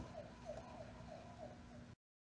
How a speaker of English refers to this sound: But as a lawyer, I could argue those are any police sirens. That is true. You cannot prove. That is true. This is from the movie.